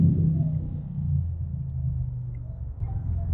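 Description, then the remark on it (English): A motorcycle engine rumbles steadily at a low pitch, with a deep idling drone that holds even throughout and dips briefly before picking back up. “It's motorcycle time.”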